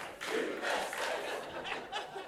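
A crowd cheers and shouts together in a sustained, loud roar, voices rising and falling over a couple of seconds with a few yelps standing out.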